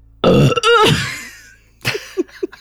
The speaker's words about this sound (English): And a burping gully dwarf too, apparently.